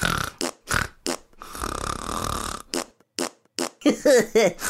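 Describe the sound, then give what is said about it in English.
A voice imitates small popping farts: several short bursts, one longer sputtering blat in the middle, then more quick pops trailing off, loud and with no other sounds around them. “You fart like a little pop fart is always coming out your butt.”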